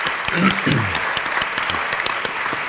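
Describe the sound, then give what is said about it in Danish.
An audience claps steadily for a few seconds, a dense wash of many hands at moderate loudness, with a voice briefly audible under the applause near the start. “ja, klap.”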